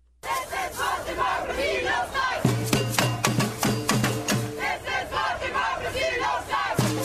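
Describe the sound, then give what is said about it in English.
A dense crowd of some 15,000 to 20,000 street protesters in Hamburg, Germany chants and shouts together, loud and unbroken, as water cannons are brought out, punctuated by sharp rhythmic bangs and a low, droning horn-like tone that sounds for a few seconds midway. “They brought out the water cannons, and here's what it sounded like in the streets of Hamburg.”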